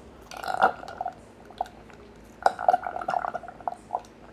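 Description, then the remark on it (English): Wet sipping and swallowing of water in two short bursts, with soft gulps and a faint clink of glass. No one speaks. “That was me sipping my water.”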